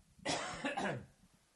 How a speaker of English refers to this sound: Sorry about the coughing, guys.